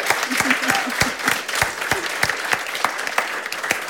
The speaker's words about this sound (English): Round of applause for Karen Healey, everyone.